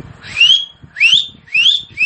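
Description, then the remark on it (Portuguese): Three loud, sharp finger whistles in quick succession, each sweeping upward in pitch and lasting about half a second, with faint low rumble beneath. “Tipo, era uns assobio como aquele lá, que tipo, você coloca o dedo na boca e solta um assobio imenso.”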